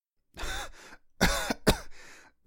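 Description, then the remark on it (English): A man who has fallen to his knees coughs several times in a quick, harsh series of bursts, fairly loud, with a brief pause partway through before a final rasping cough. “He dropped the rock and fell to his knees, coughing.”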